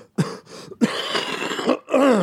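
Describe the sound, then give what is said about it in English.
A few raspy coughing bursts in quick succession, including one longer rough hack, ending with a voiced throat-clearing sound. No speech. “You guys are just going to have to deal with the coughing.”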